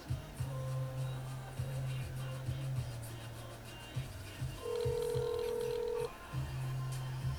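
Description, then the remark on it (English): Telephone tones as a caller dials back after the call cut off: a low buzzing tone broken into short segments, then a single sustained ringing tone in the middle before the line buzz returns. No one speaks. “I think he hung up. Let me call back.”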